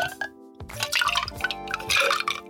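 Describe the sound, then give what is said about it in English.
A stirred cocktail of equal parts vermouth, Campari and gin is poured into a glass, a bright liquid splash and trickle with a few clinks and drips over a couple of seconds, no voices. “And then just pour that into a glass.”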